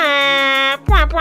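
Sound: air horn sound effect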